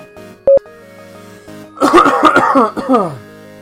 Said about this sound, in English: Don't die. So our that was an out of character cough. I could tell from the change in your tone.